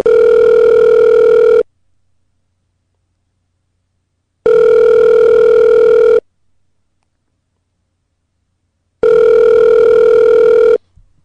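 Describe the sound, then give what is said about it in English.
A telephone ringback tone sounds three times in long, steady buzzing bursts separated by silent gaps, with faint music barely audible beneath each ring. No one speaks. “Okay, so in the ringing that I recorded it from my own show, apparently, because if you listen really closely, you can hear music in the background of the ringing.”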